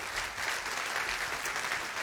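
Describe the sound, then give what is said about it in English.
An audience applauds steadily, a dense wash of many hands clapping at once, sustained and even throughout, with no voices standing out. “Let's give it up”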